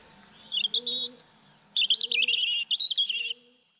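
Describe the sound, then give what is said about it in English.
A robin sings a quick, varied run of high, warbling chirps and trills for about three seconds, clear, with a faint low tone underneath and no talking. “Robins, tough little bastards there.”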